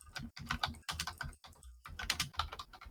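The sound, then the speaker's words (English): Rapid typing on a computer keyboard, a dense run of crisp key clicks in uneven bursts with brief pauses, heard alone without any talking. “Yeah, I'll look it up so that we don't just have 2 minutes of you typing.”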